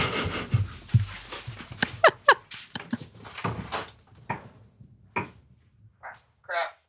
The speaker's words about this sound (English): You make a lot more door sounds than I do.